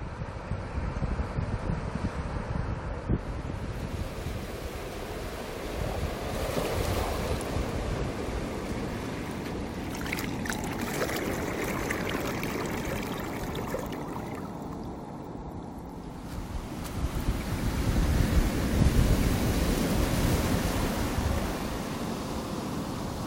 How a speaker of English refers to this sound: So thank you so much for listening once again, and we'll leave you with some beautiful ocean sounds and say goodbye.